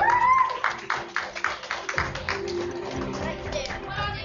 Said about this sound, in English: Round of applause.